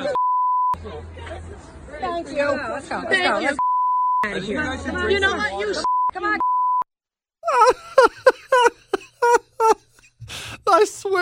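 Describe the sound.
Steady high censor beeps cut in repeatedly, three separate tones interrupting a stretch of loud, overlapping chatter, followed by choppy bursts of talk with abrupt gaps.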